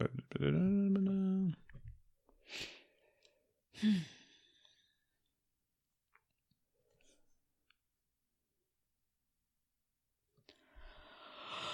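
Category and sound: human body sound, person yawning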